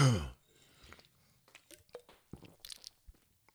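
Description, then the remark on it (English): Someone takes a sip of a drink: a short loud burst at the start, then quiet wet clicks, gulps and swallowing sounds scattered over a few seconds, with no talking. “Really gonna try it really quick. Sip.”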